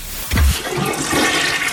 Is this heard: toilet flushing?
yes